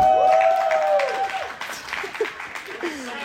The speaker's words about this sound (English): You have no idea how much that applause is deserved. I have never owned a plant before. This is a live plant.